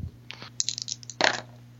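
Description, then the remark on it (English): Dice clatter across a hard tabletop: a quick run of light, rattling clicks, then a louder burst of tumbling near the end, with no talking. “Why does these dice always explode on you”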